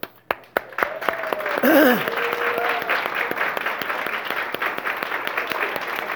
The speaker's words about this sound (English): I don't think they're all here, but all those who have volunteered to make one of their points of mission love this year to lead a family group, I want you to stand for a second, and I'd like to give you a round of applause.